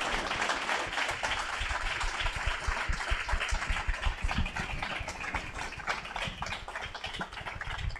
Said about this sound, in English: How about a round of applause for our esteemed guests today?